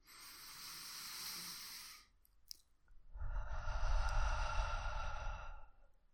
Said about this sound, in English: But if you're not driving, let's try this now. Just stop and take a breath. Take a few breaths with me.